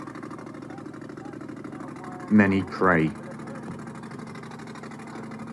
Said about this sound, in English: The journey can begin. The boat is heading to the Greek island of Lesbos, some 10 kilometers away.